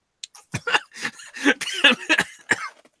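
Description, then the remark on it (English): A coughing fit: a rapid, irregular run of about eight harsh, raspy coughs packed into a few seconds, fairly loud and with no talking over them. “Drink water. Pat yourself in the back. Breathe if you're able.”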